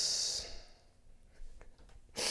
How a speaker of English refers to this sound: Oh man, I got the fucking sniffles. I'm coughing.